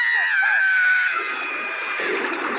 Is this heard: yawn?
no